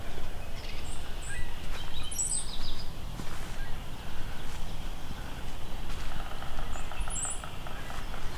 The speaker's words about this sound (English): It's like two brownhead cowbirds here too.